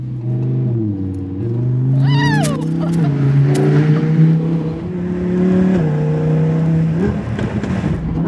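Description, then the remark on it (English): The engine of Nicolas Cage's gold sports car revs hard and climbs through several gear changes, its loud droning note rising and dropping, with sharp crackles and pops from the exhaust early on. “Snap, crackle, pop, right?”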